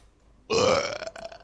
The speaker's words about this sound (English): No. You don't even apologize. At least I apologize when I burp,